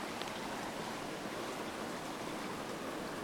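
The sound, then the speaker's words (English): A steady, unbroken rush of flowing water, like a stream or small cascade, fills the scene at an even, moderate level with no voices or other sounds. “It's always beyond description, like this water.”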